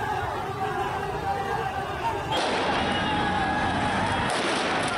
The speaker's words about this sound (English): This footage was released and alleges to show the Taliban firing on the crowd. Let's look.